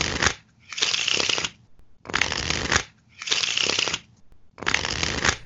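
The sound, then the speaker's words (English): A deck of playing cards being perfectly riffle shuffled over and over, each shuffle a crisp, fluttering burst of about a second separated by brief pauses, with no talking. “That's actually a recording of Will doing what is called a perfect shuffle.”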